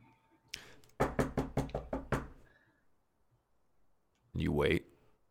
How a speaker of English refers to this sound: So who knocks on the back door? Dagonet will knock.